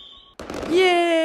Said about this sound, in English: Cue fireworks.